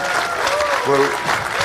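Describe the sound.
A crowd applauds with dense, steady clapping throughout, while a brief voiced cheer or whoop rises above the clapping partway through.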